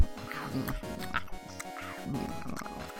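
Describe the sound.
A voice imitates a turtle eating brains, making wet, slurping, grunting munching noises in an irregular string of bursts, moderately loud, with no actual words.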